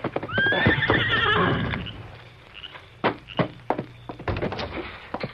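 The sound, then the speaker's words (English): A horse, Silver, ridden by the Lone Ranger, lets out a loud, high, wavering whinny, followed by a series of sharp, irregular hoof clops and thumps as it settles after arriving at the small way station at Wolf River Crossing near midnight. “It was nearly midnight when the masked rider of the plains thundered up to the small way station at Wolf River Crossing.”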